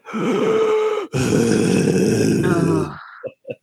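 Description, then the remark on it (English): A voice imitates a sick man's heavy, raspy, phlegmy breathing: two long, loud, gravelly breaths, the second rougher and gurgling, followed by a couple of short throaty catches. “Like that sound, the way your throat like rasps. So that was that like huge breathing like that.”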